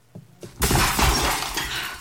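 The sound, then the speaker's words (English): A window shatters as the Ripper, shot four times by an inspector, falls backwards through it: two soft thumps, then a loud, sudden crash of breaking glass that keeps rattling and tinkling with falling shards for over a second. “The Ripper stood frozen for a moment, stunned by the impact of the firearm, and then lurched forward to resume his attack, and the inspector fired in succession 4 times, each one sending him backwards with each shot, until he fell through the window.”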